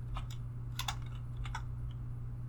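Quick bursts of typing on a computer keyboard, a handful of sharp key clicks in irregular clusters over a steady low electrical hum. No one speaks.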